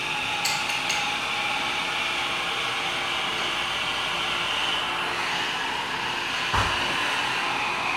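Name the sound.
espresso machine running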